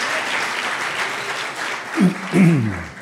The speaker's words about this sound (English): Come on, give them a clap offering.